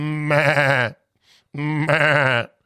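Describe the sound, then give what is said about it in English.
Two loud, wavering sheep bleats, each lasting under a second and separated by a short pause, with nothing else heard between them. “So this shiny 12-foot monolith buried in the ground in the middle of Nowheresville, Utah, spotted by some Bureau of Land Management helicopter pilots counting sheep. Literally counting sheep.”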